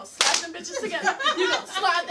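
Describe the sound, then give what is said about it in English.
A single sharp, loud slap of hands smacked together near the start, followed by voices talking and chuckling. “You're gonna slap them bitches together.”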